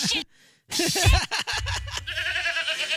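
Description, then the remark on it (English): Goats bleating loudly: after a short silence, a few wavering, quavering cries run into one another, ending in a long, sustained, trembling bleat. “Softer, please. You are scaring the goats.”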